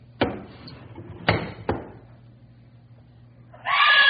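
A woman, outside at night taking the covers off patio furniture, lets out a sudden, loud scream of fright near the end, cutting in after a few sharp knocking thuds over a low background hum.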